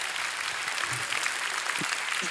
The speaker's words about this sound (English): Come on, clap your hands if you believe that.